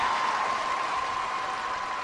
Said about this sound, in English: I didn't know Niles and Warren had such fan clubs among my listeners. That was about as serious an applause as anything that I've ever done.